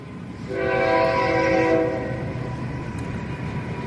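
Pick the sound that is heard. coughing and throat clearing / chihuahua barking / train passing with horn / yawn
train passing with horn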